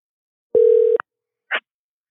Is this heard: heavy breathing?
no